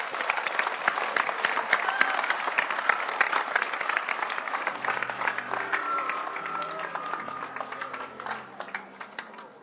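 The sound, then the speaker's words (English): An audience claps in a dense, steady burst of applause that fills the whole clip. Held musical notes rise underneath in the second half as the clapping slowly thins. “Clap your hands for him.”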